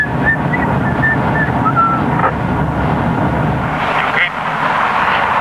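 A man whistles a few short, casual notes over the steady, loud rumble of a moving car, and the whistling fades out while the road noise continues.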